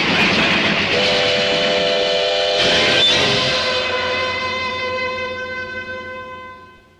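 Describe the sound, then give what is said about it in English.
In a horror film trailer, a train whistle wails in a long, sustained, piercing blast over the rumble of rail cars, holding steady before slowly fading away. No one speaks. “The scream in the night isn't the train.”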